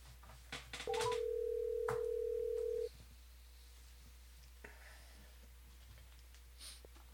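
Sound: phone call ringing out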